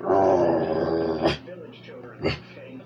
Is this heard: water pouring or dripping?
no